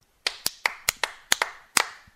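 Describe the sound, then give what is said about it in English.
A subdued golf clap: about ten light, crisp hand claps in a loose, unhurried rhythm, fairly quiet, with no voices. “I mean, it's subdued, right. More of a golf clap.”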